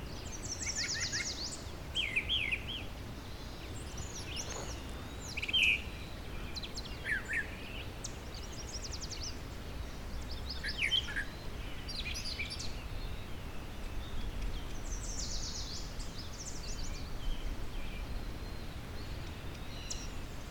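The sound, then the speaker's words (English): A mockingbird or brown thrasher sings a string of varied, high chirpy phrases with short pauses between them, fairly faint over a steady hiss of background noise. No one speaks. “Telling mockingbird and brown thrasher apart by ear takes a while to get to understand the nuances of the difference between them.”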